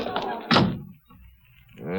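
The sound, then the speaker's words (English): The door of the Crowder office slams shut with one loud thud, briefly cutting between voices; talking comes before it and picks up again afterward. “Every time I open that door, they surge in like a tidal wave.”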